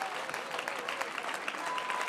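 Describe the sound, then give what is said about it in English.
A church audience claps steadily in praise to the Lord, dense overlapping applause at moderate volume, sustained without pause for a couple of seconds, with faint voices blended underneath. “Come on, clap your hands unto the Lord and give Him praise.”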